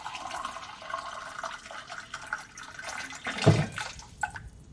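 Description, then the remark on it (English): Water runs steadily from a tap, a hissing flow with a brief louder splash partway through, as a glass is filled with drinking water at night. No voices. “After an hour of tossing and turning, she finally decided to get up and get a glass of water, hoping it would settle her enough to fall asleep.”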